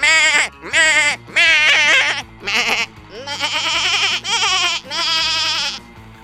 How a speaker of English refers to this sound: This is a tiny piano I invented where every key makes the sound of a screaming goat.